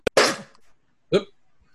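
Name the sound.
sneeze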